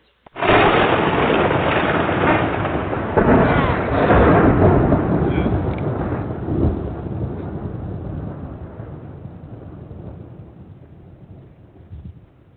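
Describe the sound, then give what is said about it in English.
A sudden, loud crack of thunder opens into a long, deep rolling rumble that slowly fades over about ten seconds, with no voices. “Is it supposed to rain tonight?”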